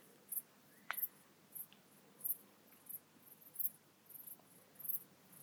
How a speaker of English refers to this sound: Now I'm going to say what we're hearing here are the regular chirps of dark bush crickets.